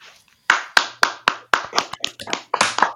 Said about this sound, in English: So if he survived 25, he needs a big round of applause.